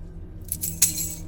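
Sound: keys jangling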